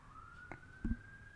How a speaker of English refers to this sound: what's that police siren? What the fuck? Jesus.